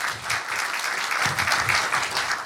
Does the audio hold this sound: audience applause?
yes